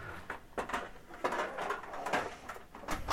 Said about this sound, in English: I was putting a pan away, actually. In the dishwasher? No, I don't have a dishwasher.